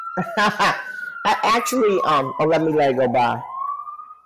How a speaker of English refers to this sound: Actually, you hear the sirens in your background, and I'm like, oh. Yeah, don't you hear that? Yes, honey. I miss it. I actually hear it again, but not enough.